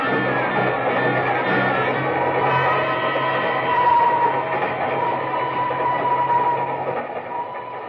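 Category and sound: vehicle, train running on rails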